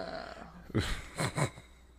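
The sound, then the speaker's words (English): A loud, guttural burp with a deep, rumbling low end, followed by two shorter croaking bursts, all standing alone against a faint background hiss. “to start this. Just with a burp.”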